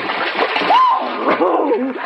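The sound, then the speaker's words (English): A loud splash as people plunge into very deep water, followed by churning and sloshing, with brief bits of voice mixed in. “Come on, let's get in.”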